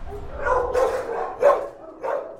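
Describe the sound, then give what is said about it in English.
Several dogs bark in sharp, irregular bursts, the yelps overlapping and echoing, with a constant clamor of barking beneath, in the kennels of the dog adoption floor at the Wake County animal shelter. “So this is the original dog adoption floor.”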